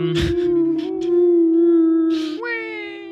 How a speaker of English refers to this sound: You hear the distant sound of wolves disappear, and after that, you hear nothing of any sort of predatory animal. You just hear some birds. No more wolf sounds.